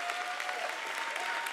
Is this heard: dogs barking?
no